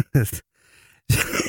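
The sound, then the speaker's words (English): Two loud, harsh coughs separated by a brief silence: a short, throaty one first, then a longer, rougher burst that trails off raspily. No one speaks. “Like, I need to cough anymore.”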